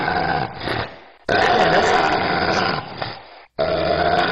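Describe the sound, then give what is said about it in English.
A demonic dog growl sound effect: deep, gravelly growling with a distorted tone, rising in three loud bursts separated by brief pauses, harsh with a wet, gargling texture. No one speaks. “This one's called Devil Dog Crazy.”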